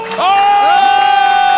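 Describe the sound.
A loud burst of canned crowd cheering played from a soundboard on a first try, with high rising whoops over a steady roar of voices that holds for about a second and a half.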